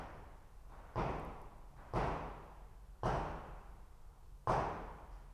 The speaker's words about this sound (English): Let's take a quick firework break. Enjoy the sounds.